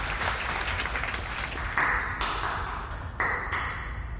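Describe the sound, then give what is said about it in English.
An audience of people who have stopped eating to watch claps steadily for about four seconds, a dense, even patter of many hands at a fairly constant loudness, with a couple of brief bright clinks ringing out over it. “Clap for us, audience.”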